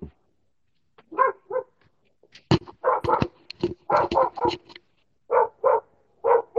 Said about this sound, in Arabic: انتبه الكلب